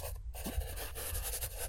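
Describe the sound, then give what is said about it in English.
A pen or marker scratches steadily across a giant pad of paper, fairly loud, with continuous scribbling strokes after a brief pause at the start. “Write that down on your giant pad of paper.”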